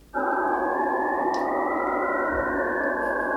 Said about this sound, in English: It's a structural plastic for packaging and tubing. And basically, the more it flexes, the stronger it gets. It's very interesting. And so the crystals produce sharp rings in the scattering, and these rings become stable tones in the sound.